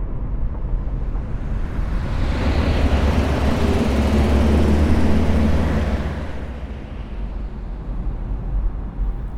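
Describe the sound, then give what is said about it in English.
A steady engine rumble of a car on the road, swelling louder for several seconds in the middle as if passing, then settling back to a constant drone. No one speaks. “We've been driving for a while.”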